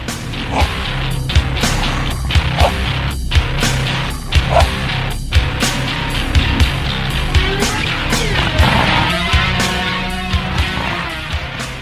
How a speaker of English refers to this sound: So that dog is very well aware of the time and the feeling of the song. He's able to punch in between the bands with his barks, which the parrot just doesn't quite accomplish.